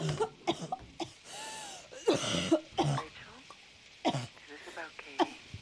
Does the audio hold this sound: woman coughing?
yes